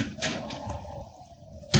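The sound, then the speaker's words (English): A sun porch door opens with a couple of soft knocks and rattles, then a low hum lingers before the door shuts with a louder thud at the end. “whatever you do, don't leave that door open.”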